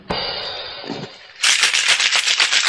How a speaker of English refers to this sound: But then we wouldn't get this great audio of me shaking a glass. It is an audio medium.